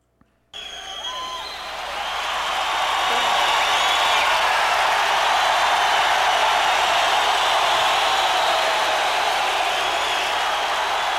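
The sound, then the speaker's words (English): A large crowd roars and cheers, the noise rising quickly over the first few seconds into a loud, steady wall of voices and shouting that carries on without letting up. “Can you hear the sound of the crowd?”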